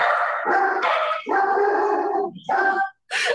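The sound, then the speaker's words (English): A dog in a house barks loudly in a few long, drawn-out, almost howling bursts, with short breaks between them and no talking. “I didn't think I knew there were two dogs in Ashley's house.”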